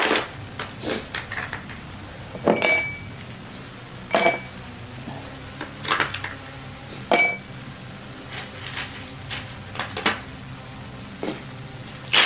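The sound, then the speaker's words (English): Ice cubes, somewhat broken up, clink and rattle into a glass in a series of sharp, bright hits, some landing in quick clusters and others spaced apart, fairly loud, as a drink of Sudachi shochu is prepared. “So let's get some ice cubes going.”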